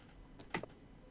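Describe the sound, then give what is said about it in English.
A couple of quick, soft clicks from a computer keyboard, as if a few keys are being tapped, with no one speaking. “Using a keyboard that I need to put back into practice.”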